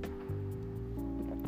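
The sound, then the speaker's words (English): A sip of water, with wet swallowing and a faint resonant gurgle over about a second and a half. Nobody speaks. “Anyways, let me take a sip here.”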